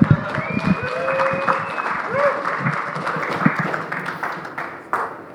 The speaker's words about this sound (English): A round of applause for our intern.